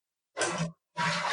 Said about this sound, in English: So it might sound echoey a little bit, but also to let our listeners know that we are on our toilets where I'm going to flush and then you're going to flush. Okay, ready?